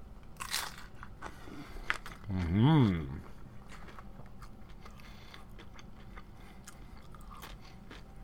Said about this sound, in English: Yes, anyways, I'm recording now, so at the request of our contestants, they want the audience to hear me eating food, so that's what we're going to hear for a little bit. I hope you enjoy this.